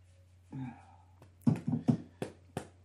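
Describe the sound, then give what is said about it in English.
A male dog, soon to turn eight, gives a short whine, then a string of five quick, sharp yips or barks at an uneven pace, fairly faint over a steady low hum, with no talking. “You got a dog, don't you?”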